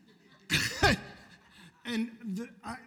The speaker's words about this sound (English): I'm pretty sure I coughed out my spleen.